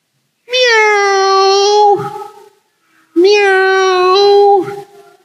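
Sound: cat meowing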